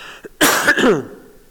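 A single harsh cough from a person getting over a little cough bursts out with a raspy, throaty edge, then trails off into quiet background noise. No one speaks.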